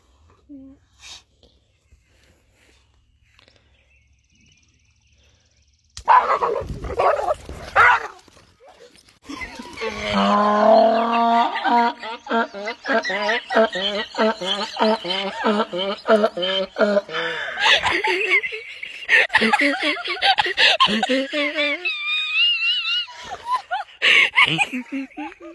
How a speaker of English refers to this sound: Hey, have you seen the video of the donkey that laughed at the boxer for hitting the electric fence?